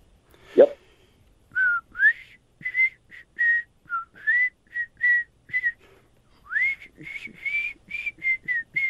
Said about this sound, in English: I'm gonna try to whistle a song, and you have to tell me the artist and the title.